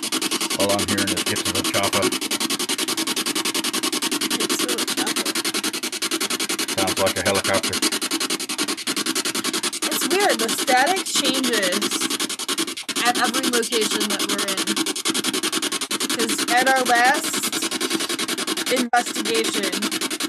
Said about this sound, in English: The static did not sound like this. No, it changes. Well, as you move around, radio stations change, and that's basically what it's doing. It's scanning radios.